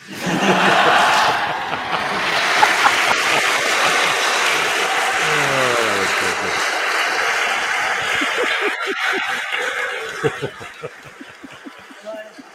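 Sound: crowd cheering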